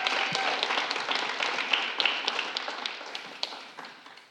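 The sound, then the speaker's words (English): An audience at Collective applauds a guest speaker as he comes up, a dense wash of many hands clapping with sharp individual claps popping out, holding fairly constant before tapering slightly toward the end. “So can we just give him a round of applause as he comes up?”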